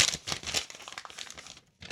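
Crisp crinkling and rustling of paper as a note passed to the speaker is unfolded, a series of bright, scratchy bursts with brief pauses between them, ending in a short final crackle.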